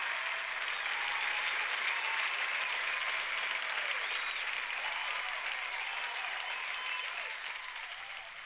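A crowd applauds steadily, a dense wash of many hands clapping at once that holds strong for several seconds before tapering off slightly at the end.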